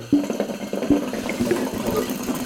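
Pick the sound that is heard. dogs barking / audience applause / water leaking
water leaking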